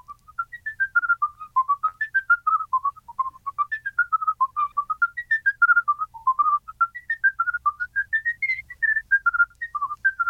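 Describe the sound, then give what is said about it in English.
A lively whistled polka with rapid, crisply triple-tongued runs of triplet semiquavers, short repeated notes, clear with no talking. “which involves a technique which brass players use called triple tonguing, so triplet semiquavers.”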